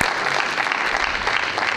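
A crowd claps steadily, a dense wash of many hands blending into continuous applause that stays loud and even throughout, with no voices standing out.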